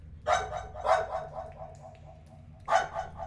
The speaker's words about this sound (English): So you guys round a few corners and keep moving down. And as you round a corner, you hear barking.